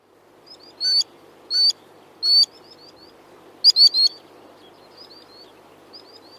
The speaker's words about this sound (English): That was the sandpiper making music for you.